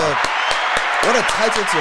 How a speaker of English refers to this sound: Let's clap. Yeah, what an achievement, bro.